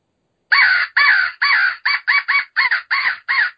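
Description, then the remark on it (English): A crow call, used by a turkey hunter to make a turkey gobble, sounds a quick run of about nine loud, harsh caws, some short and paired, with a raspy, growling edge, alone with no talking. “Just something like that adds a lot more dimension, three dimensions to the sound of the crow, a little bit of growl, a little bit of basic calling, and it just will jerk a gobble out of one a little bit better.”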